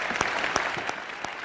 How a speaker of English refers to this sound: Nobody's ever clapped that long for Ted Cruz. This is obviously edited audio.